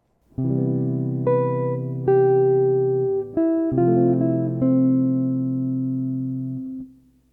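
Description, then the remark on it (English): A short two-measure melodic phrase of about half a dozen notes using only chord tones with an added rhythm, played in a steady rhythm over a held chord in a smooth, organ-like keyboard tone, with no talking. “Now I will play a two-measure phrase using only chord tones with an added rhythm to make a musical phrase.”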